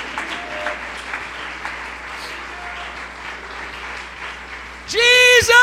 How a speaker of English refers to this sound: Let's stand to our feet and clap our hands and shout, there's power in the name of Jesus.